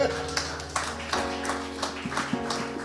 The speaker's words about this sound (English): Amen. Clap again.